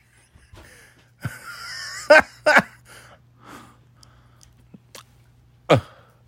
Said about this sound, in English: She's still crunching those chips, so it can't be that scary.